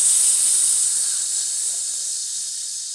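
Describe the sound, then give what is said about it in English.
A voice imitates spraying 'Holy Ghost Glade' aerosol with a steady, bright hiss that lasts about three seconds and fades slightly toward the end, with no other sounds. “Yeah, I'm just going to spray it. I'm going to make sure it's better than Glade.”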